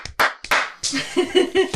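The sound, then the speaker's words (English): A few sharp, deliberate hand claps ring out, evenly spaced, a slow Citizen Kane-style clap, before voices break in and continue over the rest of the moment. “No, that deserves a Citizen Kane clap.”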